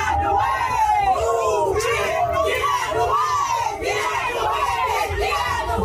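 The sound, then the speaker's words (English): A large crowd of people on a riverboat chants together in rhythmic unison, loud, with repeated rising shouted phrases and a steady low rumble underneath throughout. “All that quickly synchronizing into this single unified chant.”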